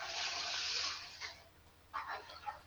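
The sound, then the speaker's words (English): A toilet flushes with a loud, rushing hiss of water that fades after about a second, followed by a short gurgling refill; no one speaks. “Hey, that was cool, a toilet flushing effect.”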